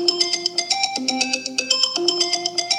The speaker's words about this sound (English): I keep my phone with me all the time, willing it to ring. Then late one night, after the kids are asleep.